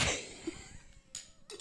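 A short, raspy cough from a person with COVID bursts out, trailing into a wheezy breath, followed by two smaller, breathy coughs or hacks. No one speaks.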